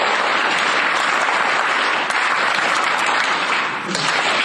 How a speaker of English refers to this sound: So please, Washington, give me one loud power clap for the 30-second drill.